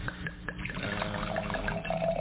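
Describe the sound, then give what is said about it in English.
Red Cabernet wine pours steadily into a glass, a continuous splashing gurgle whose tone climbs slightly as the glass fills, with no talking over it. “So Paul's going to give our first pour here.”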